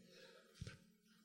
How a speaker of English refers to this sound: Bless you. We don't have time for sneezing.